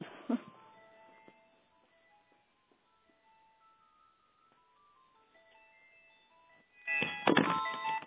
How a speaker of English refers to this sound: Oh, good grief, my telephone's ringing. Hold on.